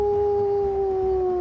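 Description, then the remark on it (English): A large snow-white wolf running out from the woods howls in one long, steady, sustained note that sinks slightly in pitch, loud, with no voices and a low rumbling background underneath. “You summon your wolf and running out from the woods, your large snow white wolf camouflaged.”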